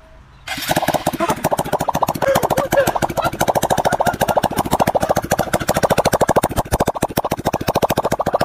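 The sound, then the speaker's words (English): An engine starts abruptly and settles into a fast, rapid-fire flapping, a balloon with its end cut off fitted over the tailpipe sputtering loudly like farting in steady pulses, with no talking. “I guess it's supposed to make like a farting sound when you start the engine.”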